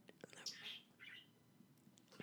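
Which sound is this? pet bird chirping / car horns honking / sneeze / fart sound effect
pet bird chirping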